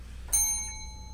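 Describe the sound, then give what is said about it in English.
A single bright bell strike rings out clearly, its clear metallic tone sustaining briefly before fading away, with no voices present. “Hit that bell.”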